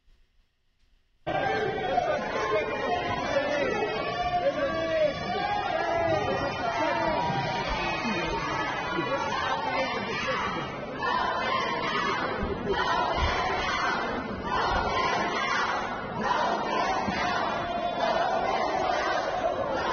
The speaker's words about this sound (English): At the end of the assembly, as the crowd was yelling to the Speaker of the House, vote them out, meaning vote out the Speaker of the House, mm-hmm.